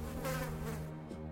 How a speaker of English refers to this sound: turns around and screams, and a couple bees fly out of his mouth.